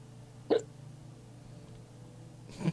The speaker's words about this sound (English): Did the movie give you the hiccups? He has the terror hiccups. Yes, I have the terror hiccups. They're impossible to get rid of.